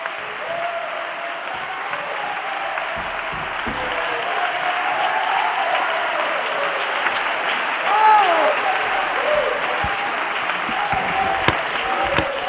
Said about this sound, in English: We ought to clap our hands right now unto the Lord.